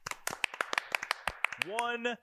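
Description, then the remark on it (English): A brief burst of applause: a dozen or so sharp, uneven claps in quick succession, ending with a rising voiced cheer that carries over the last claps. “Round of applause for all of our listeners.”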